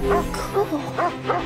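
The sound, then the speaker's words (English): A dog barks four times in quick succession, sharp yappy woofs spaced about half a second apart, moderately loud. “Did you see the dog?”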